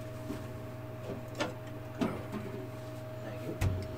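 A fridge door is opened amid a steady electrical hum, with a few soft clunks and rattles spaced a second or so apart as drinks are taken out, fairly quiet.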